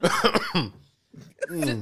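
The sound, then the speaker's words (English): A person clears their throat in two rough, voiced bursts separated by a brief pause, loud and raspy against a quiet background. “Let me clear my throat.”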